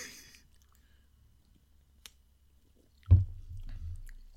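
Wet slurping and gulping as someone takes a first sip of a foamy, strong beer from a freshly opened 440 ml can, starting abruptly after a near-silent stretch with a faint tick, then a low, bubbly swallowing sound for about a second.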